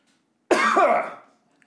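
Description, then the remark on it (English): A single loud, harsh throat-clearing cough bursts out, rasping with a brief voiced rise before trailing off, performed by a voice as a demonstration of coughing on getting into bed, with silence on either side. “So you get home, so you're fine, nothing happens, and you get home and you start coughing. I start coughing when I get into bed.”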